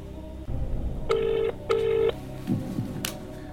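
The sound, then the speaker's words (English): A telephone ringback tone, as a call is placed to a friend, sounds as a double burst of two short, steady buzzing tones in quick succession, fairly clear over a low background rumble, followed by faint handling noise. “Okay, it's ringing.”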